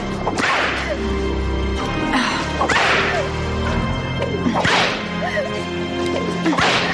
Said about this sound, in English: And it starts with this woman who's whipping this other woman and stuff, and just the sound effects of the whip. And it's like, you're not even hitting this girl with this whip. And yet it's like, whoosh, whoosh.